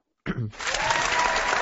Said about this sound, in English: Give you a golf clap on that one.